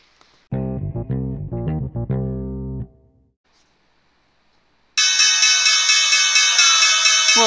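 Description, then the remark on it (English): A closing bell sound effect: a short run of low, punchy synth notes, a brief silence, then a loud, bright bell rings continuously with a rapid pulsing clang until the end. “Closing bell.”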